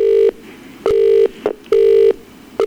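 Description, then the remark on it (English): A telephone ringing tone sounds over the line in repeated steady buzzing bursts, each under half a second with brief clicks between, clear with no one talking, as a woman is called again. “Actually, I'm going to call her again because she's too scared.”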